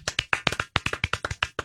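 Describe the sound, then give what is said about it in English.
Several people clap together, a quick run of about a dozen sharp, bright claps in a steady, slightly uneven rhythm, with no talking. “Let's clap together.”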